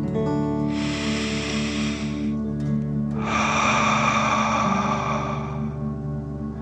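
A deep breath drawn in through the nose, filling the chest and belly, a brief pause, then a longer, louder airy exhale out through the mouth, one of three deep breaths in a relaxation exercise, clear over a soft, steady musical drone.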